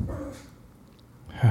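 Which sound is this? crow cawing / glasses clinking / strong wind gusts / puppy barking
puppy barking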